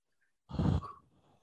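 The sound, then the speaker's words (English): A person does a creepy imitation of Michael Myers' heavy breathing right into the microphone: one loud, rough exhale, then a quieter, raspy trailing breath. “Cue Michael Myers just breathing into the mic.”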